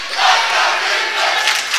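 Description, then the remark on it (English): The Gallatin student section at a basketball game against Portland chants for the Green Wave in a loud, steady roar, a dense wall of cheering and chanting with no clear individual words and no pauses. “Gallatin student section now chanting for the Green Wave.”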